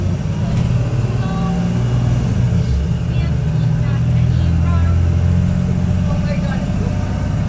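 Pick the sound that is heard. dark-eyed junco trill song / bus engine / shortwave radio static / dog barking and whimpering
bus engine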